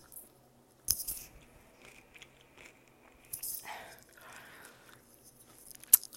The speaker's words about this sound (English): Well, recently, I don't know if you guys like the sound of me chewing. So hold on a second. Let me come back.